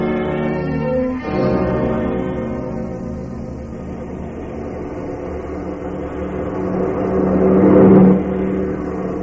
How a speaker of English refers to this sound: We swing the car around the curve a little further and head it this way.